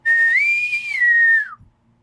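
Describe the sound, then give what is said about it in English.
A single sustained whistle, loud, holding a steady pitch with a slight rise and dip before sliding downward and cutting off after about a second and a half. “After a little bit of time of everyone checking their sleeping quarters, and everyone kind of meets out in the middle of that hallway, and you guys can hear like a whistle.”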